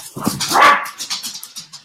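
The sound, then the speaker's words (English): Dogs bark in a quick run of sharp, loud barks, the first few strongest, then a string of shorter, fainter yaps trailing off, with no one talking. “Hi, dogs.”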